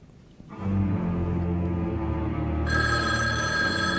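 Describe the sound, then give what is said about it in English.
A landline telephone rings loudly and continuously in a clip from the old horror movie When a Stranger Calls, as a babysitter gets harassing calls; its bright metallic tone is layered over a low sustained drone, with a higher ringing pitch joining partway through. No one speaks. “A babysitter was getting harassing phone calls.”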